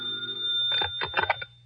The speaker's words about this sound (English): It was nearly 3 o'clock by the time I got to bed, and it seemed that I had only just fallen asleep when my telephone rang.